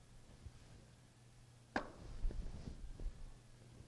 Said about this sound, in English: That's not how you knock, but that's not how you pray either. How do you knock? No, that's how you knock when you hope nobody's home. Right? Like you're out on visitation and it's your turn to talk. Please let nobody be home.